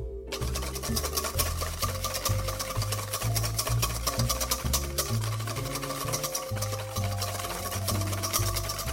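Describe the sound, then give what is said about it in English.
Two eggs being whisked in a mixing bowl until foamy: a fast, steady, rattling clatter that runs continuously for the whole stretch, fairly loud, over a low droning hum, with no one speaking. “Okay, these eggs need to be whisked until they are foamy.”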